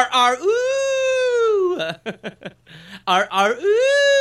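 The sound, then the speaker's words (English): A human voice imitates a dog with a long, high, drawn-out whine, then a quick string of short yelping bursts, and ends on another sustained whimpering howl. “I've worked on the dog impression. This is an accurate dog.”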